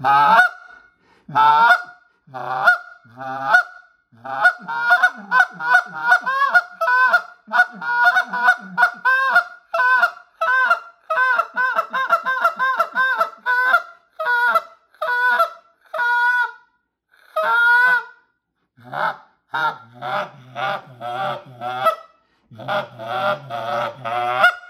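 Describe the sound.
A goose call blown slowly and precisely to get a big honk, for big geese, in a long run of loud, reedy honks and clucks, some slow and drawn out, others quick and choppy, with brief pauses between bursts and no talking.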